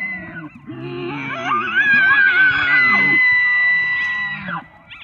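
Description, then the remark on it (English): An elk bugle recorded by the National Park Service, a call elk make only in the fall: a long, rising, high-pitched whistling call that climbs and holds a shrill tone for several seconds, layered over lower grunting harmonics before fading out. “Now, that's actually a recording of an elk from the National Park Service. They only call out like that in the fall.”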